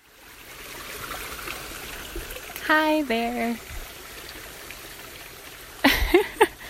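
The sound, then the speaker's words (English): A creek flows and trickles steadily in the background, a soft continuous wash of water, with a person briefly speaking a greeting partway through and another short burst of sound near the end. “So let's go back to the creek and jump in.”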